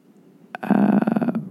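A single heavy, rough exhale right up against the microphone, loud and close, with a creaky, guttural edge lasting under a second. No talking.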